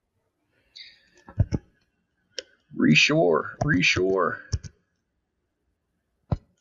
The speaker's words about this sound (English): We can hear you typing. When you like mash on your keys, it sounds like, yeah. Sorry. I'm just command tabbing to the list so I can see it.